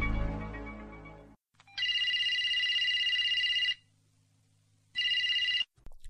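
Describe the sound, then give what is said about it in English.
A telephone rings twice with a bright electronic trill, a long burst followed by a shorter one after a pause, loud, following a brief fading musical chime. It is a customer's call coming in to a mobile phone company's customer service line, Intercommunications Limited. “a customer service representative for the mobile phone company, takes the call.”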